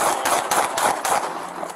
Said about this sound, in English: So you can hear there how quickly all of this unfolded in just a matter of seconds. And all we can hear about 10 gunshots on the body camera footage. The whole footage lasts just over a minute.